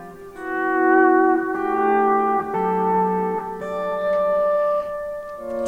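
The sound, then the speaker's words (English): Electric guitar played through a Keeley Halo echo pedal doubling as a reverb, with no other pedals. Sustained chords shift every second or so, each ringing into a washy, repeating tail. Fairly loud, with no voices. “Let's just hear just the pedal for a second. Double as a reverb.”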